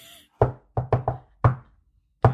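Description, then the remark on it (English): A patterned secret knock on a hard surface: one rap, a quick triple, another rap, a pause, then a final rap. The knocks are fairly loud, with no voices. “Number three, secret knock.”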